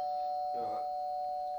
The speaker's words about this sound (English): Hang on, I'm ringing the doorbell.